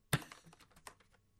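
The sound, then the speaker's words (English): A sharp, loud click followed by a quick run of softer, lighter clicks and taps as keys are pressed on a Labo cardboard toy piano, with no talking. “What is clicking? It's the piano.”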